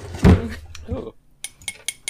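A short burst of muffled voice-like sound, then four bright, ringing clinks of a glass held next to the microphone, spaced roughly evenly over about a second, each sharp and high-pitched with a brief shimmering tail.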